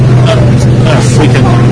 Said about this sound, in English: This truck is going too fast, and it goes around curves, we all are thrown against the side. And the truck keeps trying to dodge people walking along the side of the road, bicycles carrying more refugees' belongings.